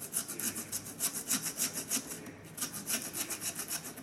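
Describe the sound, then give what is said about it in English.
A woman saws steadily with a hand saw into a lamb's skull, one side and then the other, with rapid rasping back-and-forth strokes at a regular rhythm, moderately loud, with a brief pause midway before the sawing resumes. “is sawing into the skull of the lamb.”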